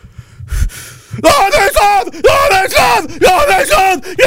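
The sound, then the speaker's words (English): A loud voice imitates a screaming protester at a protest with about three strained, wordless yelling bursts after a quiet second, the pitch rising and falling in exaggerated, ranting shouts. “They don't know how to talk, and they just scream rehearsed phrases that they've heard somewhere. They just scream things.”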